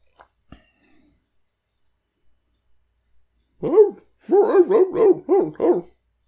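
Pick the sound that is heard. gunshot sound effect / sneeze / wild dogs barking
wild dogs barking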